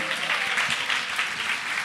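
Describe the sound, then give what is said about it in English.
An audience at a church service claps for Jesus in a steady, dense wash of applause from many hands, sustained at an even level throughout with no voices standing out. “You may take your seat in his presence and clap for Jesus if you will.”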